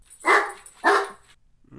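A dog named Mac barks twice in quick succession in a studio, loud, each bark a sharp burst about half a second apart, followed by a brief pause and the start of another faint sound.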